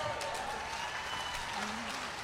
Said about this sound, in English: Now the clapping is not nearly as loud, but we're going to... a crowd of several thousand people.